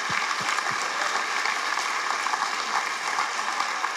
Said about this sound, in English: So, hey, if you could stay standing for a second, though, because I really appreciate that applause.